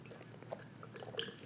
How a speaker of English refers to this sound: Take another drink of water real quick.